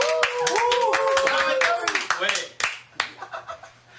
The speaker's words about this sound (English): Give a big fish tank round of applause for Mr. Beast.